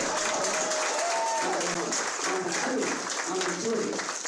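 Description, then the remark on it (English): A crowd applauds steadily for about four seconds, a dense, even patter of clapping with faint voices and a few shouts mixed into the noise. “And then everybody's applauding?”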